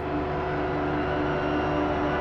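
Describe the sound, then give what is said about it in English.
A dense, steady wash of shimmer reverb feedback, layered drone tones ringing out continuously and fairly loud, with no voices and no breaks for the whole stretch. “Or the shimmer.”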